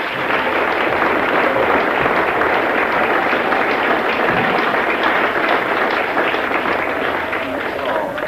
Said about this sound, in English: Well, I think that's grand. Give them all another clap.